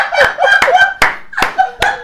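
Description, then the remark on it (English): A man claps mockingly at a producer: five slow, evenly spaced hand claps ring out sharply, roughly two per second, with voiced, chuckle-like sounds filling the gaps between them. “No, I'm actually clapping at your sorry ass wanting an acknowledgement.”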